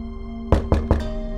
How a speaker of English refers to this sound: And then just frantically knocks on the door.